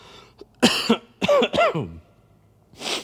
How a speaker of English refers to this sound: Now I've got a hacking cough. I'm coughing without ceasing. This is actually, like, you know, a real live demonstration of what this word is about.